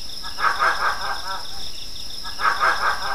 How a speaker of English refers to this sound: So generally, the cats have a chuckling call that is very peculiar for fishing cat. Unlike any other small cat, you can really hear them.